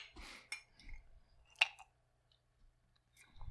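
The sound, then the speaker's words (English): Star Wars coffee mugs clink together in a toast: some light clattering, then one sharp ceramic knock that rings briefly before fading into quiet. “Cheers to Star Wars.”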